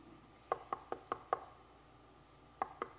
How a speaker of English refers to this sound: He's going to knock on the door. I'm answering it.